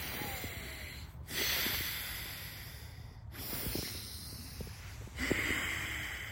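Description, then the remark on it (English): Forceful breathing through the nose in a breathwork exercise, with loud, hissy snort-like breaths in a steady cycle, with brief pauses between breaths and no talking. “You know, the dragon breath is a great one. The alternate nostril breathing is a great one as well. Let's do a quick one now.”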